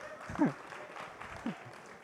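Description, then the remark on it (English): An audience gives a round of applause, led by those who failed a subject: a dense, steady wash of many hands clapping for about two seconds, with a few brief voices or whoops rising over it. “Everyone's giving a round of applause, everyone that failed the subject, I think.”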